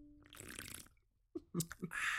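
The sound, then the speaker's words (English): Sipping unflavored La Croix sparkling water from a blue can: a fizzy hiss, a short pause, then a few quick slurps and swallows before the bubbly hiss returns. No one speaks. “He always seems more aggressive when he has that La Croix. It's supercharged by soda water.”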